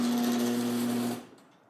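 garage door opening

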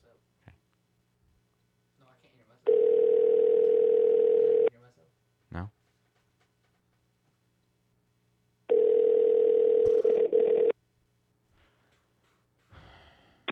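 phone call ringing unanswered

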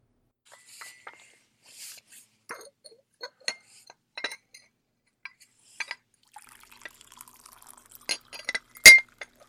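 pouring tea

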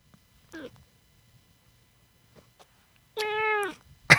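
cat meowing

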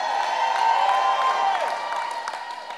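audience clapping hands

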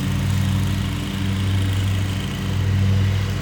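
lawn mower engine running

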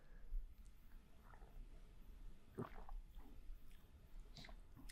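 sipping iced tea

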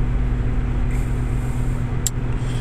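car interior road noise

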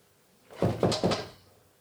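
knocking on a window

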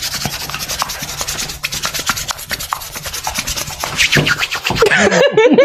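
hands rubbing together

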